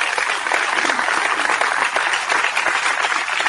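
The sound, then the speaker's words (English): A crowd applauds steadily on the radio show On Point with Victor on America's Web Radio, a dense, even wash of many hands clapping at once with no pauses, holding a constant loudness throughout the few seconds. “With again, I tell you, I love audience participation.”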